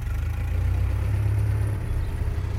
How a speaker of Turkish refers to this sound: Anna'nın yollattığı çok belli olan şık bir Mercedes-Benz kaldırmaya yanaştı